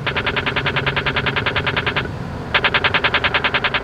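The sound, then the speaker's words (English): Rapid, evenly spaced electronic ticks from a pedestrian crosswalk signal in the San Francisco Bay Area after the button to cross is pushed, a fast machine-gun-like chatter that runs for two seconds, pauses briefly, then resumes at the same brisk pace. “When you come to a pedestrian crosswalk in many parts of the Bay Area and push the button to cross, you're likely to hear this sound.”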